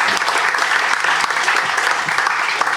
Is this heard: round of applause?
yes